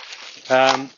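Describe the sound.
A plastic bag crinkles with a soft, scratchy rustle for about half a second as it is taken off Wolfie's bandaged leg. A short voiced sound then cuts in over it and fades out.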